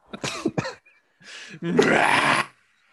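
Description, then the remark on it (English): A man breaks into a coughing fit: a couple of sharp hacking bursts, a pause, then longer, rasping coughs and throat-clearing, loud with no talking. “He's still going.”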